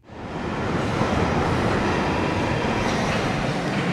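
A London Underground Northern Line train, used for commuting to the City of London, rumbles along steadily, a loud, dense roar of wheels and carriage noise with faint clattering, continuous throughout, with no voices.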